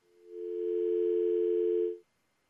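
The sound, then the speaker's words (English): A steady, continuous telephone dial tone hums for about two seconds, holding one even pitch before cutting off abruptly into silence. No voices are present. “All right, Karen, dial tone.”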